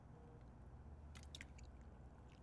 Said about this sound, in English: So, with that said, we finna dive in after I take a sip of this water.